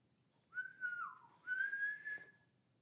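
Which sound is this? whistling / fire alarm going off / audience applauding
whistling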